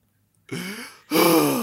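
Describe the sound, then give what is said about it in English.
Someone mimics heavy, labored breathing: two loud, raspy, voiced breaths, the second harsher and longer, after a brief silence. “Now I'm starting to wonder if he has a drinking and breathing problem.”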